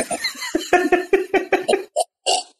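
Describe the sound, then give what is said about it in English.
A person vocally imitates retching and hacking up a hairball, a rapid series of about nine throaty, gagging bursts followed by two harsher, breathy heaves, loud. “I involuntarily retch again.”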